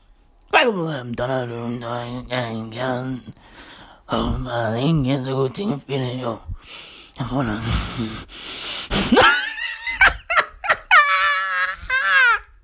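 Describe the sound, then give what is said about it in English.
A man imitates creepy heavy breathing and wordless mumbling, with drawn-out moans, breathy gasps and snorts, ending in a couple of high, strained whines. “They be out there fucking heavy breathing in a dark corner, mumbling shit, just saying words.”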